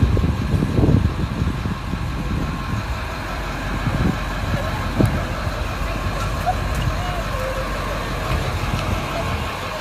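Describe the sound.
A large bus engine idles with a steady, low rumble throughout, joined by a faint clatter and indistinct voices in the background.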